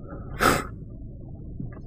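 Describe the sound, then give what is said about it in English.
One sudden, sharp sneeze bursts out over a low background hum, then fades quickly into quiet with no talking. “Oh, God bless you.”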